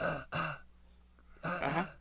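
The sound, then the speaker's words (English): Two low, rough throat-clearing coughs, the first short and the second longer after a brief pause, fairly loud with no talking. “I've been coughing for like a month.”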